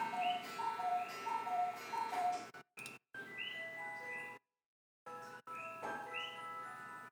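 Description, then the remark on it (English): A cuckoo clock sounds, with steady ticking and bright repeating melodic tones, broken by a couple of short silent gaps. No one speaks. “And there's the cuckoo clock again.”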